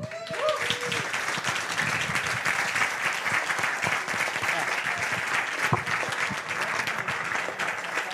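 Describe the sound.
Sustained applause from an audience for the evening's speakers and contributors, a dense, steady wash of many hands clapping at an even loudness for several seconds, with a brief voice audible at the very start.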